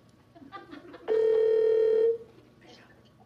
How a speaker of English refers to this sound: Speakerphone. Oh, please, God, somebody answer. Oh, it's ringing! Oh, yay! Okay, it's ringing.